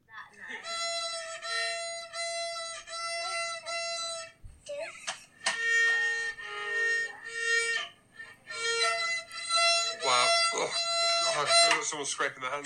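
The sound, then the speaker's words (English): A child scratches out Baa Baa Black Sheep on a violin at 6:30 in the morning: loud, squeaky bowed notes in short runs and held tones, with a few brief pauses between phrases. “with a violin, and she's playing Bar Bar Black Sheep”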